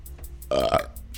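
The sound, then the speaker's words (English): A single loud, guttural burp lasting about a third of a second against faint background hiss. “I just keep burping.”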